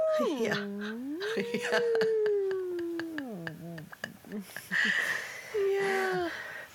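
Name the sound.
voice imitating whale call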